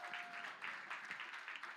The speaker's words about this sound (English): If you have ever struggled with depression or suicide and God has set you free, stand up now, please. Give a hand to clap for those who have the bravery to do it in this church.